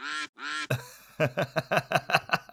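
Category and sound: sound effect, duck quacking sound effect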